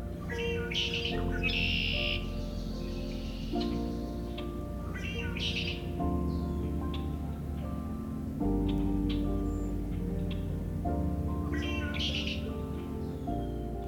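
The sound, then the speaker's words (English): Bright chirps and warbling calls from a wide variety of songbird species in mid-March at Coots Paradise in Hamilton, Ontario, come in repeated bursts, layered over a steady, sustained tonal hum that fills the background throughout. “Before I reach the blackbirds, however, a wide variety of songbird species are celebrating the return of warmer weather.”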